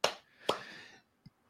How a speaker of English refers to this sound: Yep. Clap it up, boys.